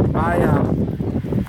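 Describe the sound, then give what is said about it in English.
Steady wind blowing outdoors, a low continuous rumble buffeting the microphone while a man talks over it for the whole stretch. “Now, it's windy out here.”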